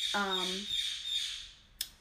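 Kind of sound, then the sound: bird, pet bird squawking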